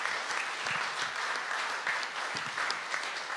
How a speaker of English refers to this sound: Now you can clap to that today. Praise the Lord.